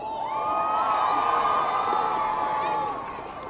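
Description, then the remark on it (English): A large crowd cheers and shouts continuously as a woman makes her way through it, stopping to engage with people; a dense wash of many overlapping voices holds steady and loud before easing slightly at the end. “As you can hear, the crowd is certainly pleased.”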